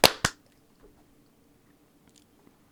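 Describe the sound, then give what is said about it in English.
A single sharp, loud hand clap for audio sync, after a 3-2-1 countdown, rings out with a second quick snap right behind it, then near silence with only a faint low hum and a few tiny clicks. “The energy is very high tonight, as you can tell by just the deafening silence after that clap, for sure.”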